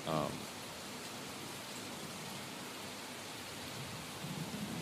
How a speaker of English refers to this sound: In parentheses, empty arena plus rain/thunder. Rain/thunder ambiance.